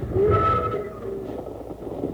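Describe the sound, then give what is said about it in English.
A passenger train on its way to the state capitol rolls steadily along the rails, a continuous rumble with a brief tonal whine near the start and no voices. “Wild Bill and Jingles started on a train ride to the state capitol”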